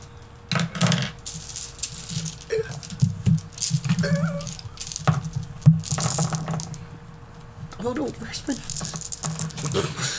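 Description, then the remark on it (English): Dice, all but a D20, spill out in a quick burst of sharp clicks and clatters as a player rolls for a perception check, rattling and tumbling irregularly over several seconds, with brief murmuring voices mixed in. “Why did everything but my D20 come out?”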